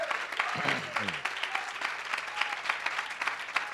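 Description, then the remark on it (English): A church audience claps hands in praise of the Lord during a service, dense steady applause for several seconds, with a few voices calling out briefly underneath near the start. “Give the Lord a real good hand clap of praise.”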